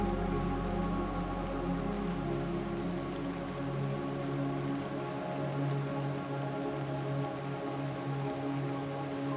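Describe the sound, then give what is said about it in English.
Fat, heavy raindrops patter steadily into a pool, a continuous, even spatter at moderate volume, with a low sustained tonal hum running underneath throughout. No one speaks. “Looking over at the pool, you notice that a handful of raindrops are dropping into the pool.”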